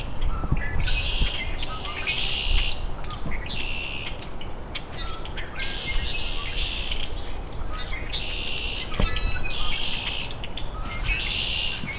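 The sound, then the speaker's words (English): Common grackles and red-winged blackbirds call in a noisy flock, heard from in the middle of it, with repeated harsh, buzzy bursts rising over a constant dense chatter of many birds, steady throughout. “Common grackles, red-winged blackbirds.”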